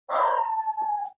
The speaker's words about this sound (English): Hear the dogs go. Hold on. Excellent. Yes, the dog sounds very excited to get involved as well.